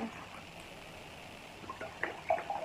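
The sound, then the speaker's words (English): Wine trickles and gurgles steadily as it is poured into a glass, growing a little louder with bright splashy bubbling toward the end. Fairly quiet, with no talking. “Pour more wine.”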